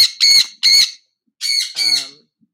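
A parrot squawks loudly, four harsh, raspy calls in two quick pairs separated by a short pause, with no talking.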